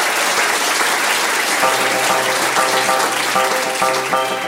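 An audience claps in a loud, dense round of applause that holds steady for several seconds, while soft sustained musical tones start underneath about a third of the way through.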